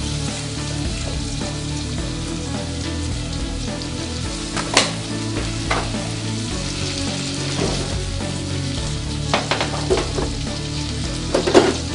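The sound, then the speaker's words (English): A steady, hissing sizzle of cherry tomatoes frying in olive oil with onions in a pan, punctuated by sharp pops and crackles, with no one speaking. “And I found some tomatoes, some cherry tomatoes. Pour them in there.”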